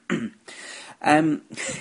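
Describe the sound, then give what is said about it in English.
A moderately loud cough broken into about four rough bursts, one with a throaty voiced rasp, with short pauses between them and no talking. “Oh, my voice has gone a bit deep then after that cough.”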